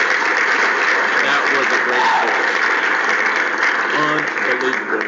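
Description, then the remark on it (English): Steady, dense applause from a crowd holds at an even loudness for the whole five seconds, a continuous wash of many hands clapping with faint voices mixed in. “Let me go ahead and give them a round of applause.”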